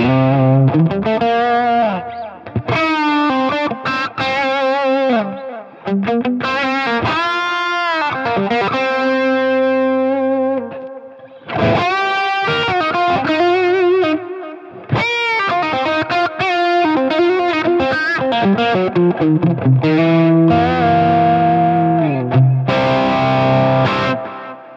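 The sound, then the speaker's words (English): Electric guitar played through a Clarksdale overdrive pedal stacked into a Euphoria overdrive pedal and a delay on setting one, with singing, bent lead phrases and chords ringing into echoing tails, loud for about twenty-five seconds with no talking. “So let me throw some dirt on it. I'm going to stack the Clarksdale into the Euphoria and see what we get.”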